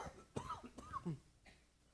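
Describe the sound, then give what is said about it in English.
A person coughs several times in quick succession, fairly loud, with a rough throaty rasp and a brief hoarse clearing at the end. “Sorry, your cough drops aren't working.”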